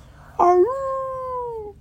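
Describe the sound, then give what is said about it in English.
A single wolf howl at a ski resort rises sharply at the start, then holds a steady, slightly falling tone for over a second before fading out. It is clear, with no talking over it. “A wolf howled as Scooby and his friends entered the ski resort”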